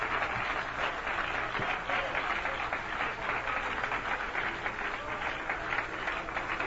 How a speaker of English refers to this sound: Praise the Lord. Praise the Lord. Give Him a hand clap of praise, will you?